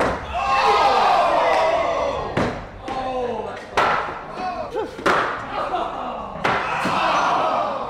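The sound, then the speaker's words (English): Thrown axes strike a wooden target board with scoring rings and a bullseye, with sharp, loud thwacks, about four impacts spaced a second or so apart, over a steady background of voices and crowd murmur. “I'm about to inflict some serious pain on this hard board.”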